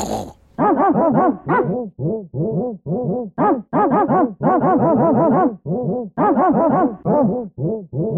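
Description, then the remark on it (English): A dog barks and growls in a long, rapid run of loud, harmonic yelps and grumbles, with hardly a pause between bursts and no one talking. “Dog is confused and alarmed by the noises coming out of the your body.”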